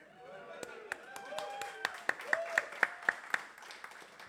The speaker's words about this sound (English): You do that, and then you kind of lean in to be like, fucking applaud that shit now.